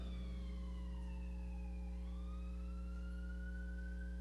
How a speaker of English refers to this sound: Case in point. Ambulance.